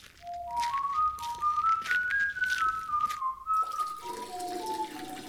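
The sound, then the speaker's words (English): Someone whistles a cheerful, wandering tune while a steady stream of urine splashes continuously onto a vegetable patch outdoors. “Well, I'm going to go out and water the vegetable patch right now.”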